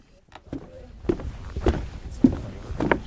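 Footsteps of two people walking along a forest trail, a steady but uneven series of soft crunching steps on earth and debris, fairly close and at moderate volume.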